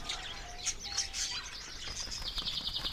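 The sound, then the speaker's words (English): Small birds chirp and tweet in quick, high-pitched bursts as they fly away, with a soft flutter of wings beneath them, a steady busy chatter that carries on for a few seconds with no voices. “And away they fly through the crack in my orb and into the mushroomy skies. Farewell, little birds.”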